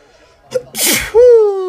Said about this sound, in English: I am about to sneeze.